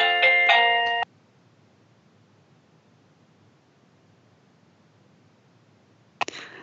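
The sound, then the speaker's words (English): An ornate multi-note doorbell chime rings out loud for about a second, then cuts off into near silence, followed later by a brief soft clunk. “That's a very fancy doorbell.”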